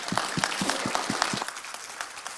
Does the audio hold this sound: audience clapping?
yes